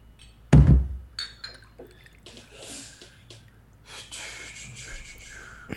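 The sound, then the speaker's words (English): A heavy thump, then a few seconds of liquid being poured and splashing into glasses, with soft clinks and faint breathing, as another round of drinks is poured. “Let's get another drink, fellas.”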